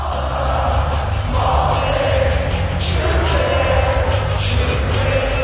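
A huge crowd at Ball Arena in Denver sings along together at the Colorado Avalanche home opener: a loud, continuous roar of massed voices, swelling in waves over a steady low rumble, with no single speaker standing out.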